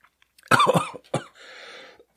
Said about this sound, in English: Oh my God, that there's no way to drink that and not cough when you take the first sip, first of all. Yeah, ginger doesn't work.